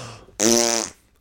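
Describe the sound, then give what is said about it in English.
A single loud, buzzy raspberry made with the lips imitates a fart, lasting about half a second after a faint murmur, clear. “That was my mouth, not a real fart.”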